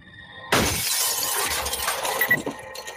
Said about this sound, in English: 62-year-old Dolores Davis was enjoying her retirement in a house on the outskirts of town. As Mrs. Davis slept, someone hurled a concrete block through the glass door of her home.